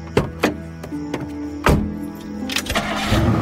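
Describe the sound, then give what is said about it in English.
A car engine turns over with a few sharp clunks and cranks as the key is turned, then catches and settles into a steady, rumbling run. No voices. “Anne turned the key, starting the car up”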